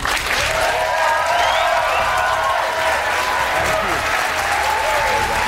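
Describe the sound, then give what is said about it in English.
A large audience of Democrats and independents applauds and cheers steadily throughout to welcome Secretary Julián Castro, dense clapping filling the space with scattered whoops and shouts rising above it. “So, without further ado, everyone, can you please give a very warm welcome to Secretary Julián Castro.”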